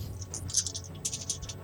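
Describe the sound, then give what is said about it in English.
Dice are rolled for a damage roll, rattling and clattering in a quick, bright burst of small clicks, bunched in two clusters over a low steady hum, with no voices. “Get all of the dice in.”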